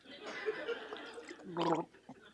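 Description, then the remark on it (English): Someone drinks water: wet, gurgling mouth and swallowing sounds run for a couple of seconds, ending in a louder gulping burst before a brief pause. “Hold on, I just need some water.”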